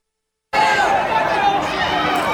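After a brief silence, dense street crowd noise in Manhattan cuts in abruptly as a police officer pulls a gun on the crowd: a steady, loud babble of many overlapping voices, shouts and commotion that continues without a break.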